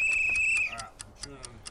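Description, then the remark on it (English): A ticking clock sound effect taps out quick, even ticks about four or five per second, with a steady high whine fading out partway through and a faint murmur underneath. “Baseball finally did something right. Pitch clock.”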